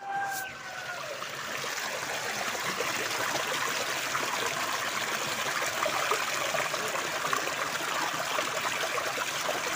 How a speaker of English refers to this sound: All right, let me take you outside just so you enjoy the rain, as I have some more time to get to church.